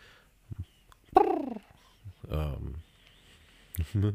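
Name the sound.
birds calling outside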